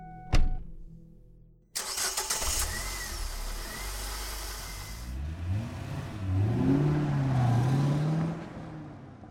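A sharp thump, a brief pause, then an SUV engine cranks and catches with a loud burst, settles into a rumbling idle, and revs up with rising pitch as it pulls away fast, with Shelley driving.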